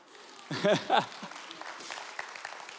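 audience clapping

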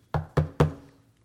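knocking on a door

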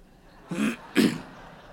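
cough and throat clearing

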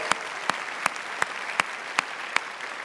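audience applause

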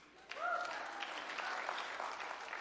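a few claps

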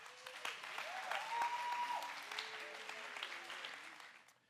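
audience applauding

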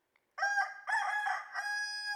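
rooster crowing

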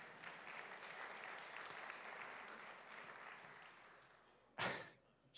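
audience clapping

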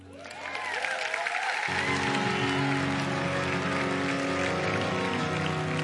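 audience applause

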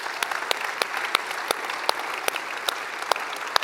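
audience applauding

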